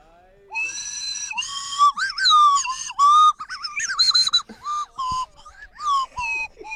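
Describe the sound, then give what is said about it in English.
A professional slide whistle plays a wobbly, halting tune, its bright tone swooping and bending between notes in short bursts with brief gaps, fairly loud and with no talking. “That is some slide whistle. I mean, that is a professional whistle he has there, though.”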